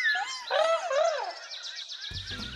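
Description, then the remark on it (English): Several small birds chirp and twitter, with sweeping whistled calls followed by a quick run of repeated tweets, and a low rumble entering near the end. “Hey, would you all like some bird snacks? Chirp, chirp.”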